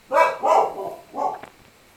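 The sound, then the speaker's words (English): A dog barks three times in quick succession, two sharp barks close together followed by a slightly softer third after a brief pause, with no talking. “Or receiving threats from the dog.”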